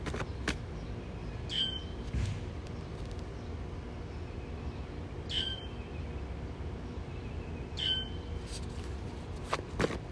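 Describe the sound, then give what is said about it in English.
A baby crow gives three short, high calls spaced a few seconds apart over a steady low outdoor rumble, with faint scuffing sounds underneath. “So that's a baby crow. This is a baby crow sound.”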